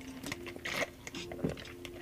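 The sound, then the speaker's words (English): Sips of Dr. Pepper soda: a few short slurping and swallowing sounds with crackly carbonation fizz, over a faint steady background hum, no talking. “I needed a sip of that Dr. Pepper.”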